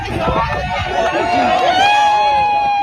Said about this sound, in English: Everyone's cheering him. This is the best bit. Go back. Everyone's like, yay!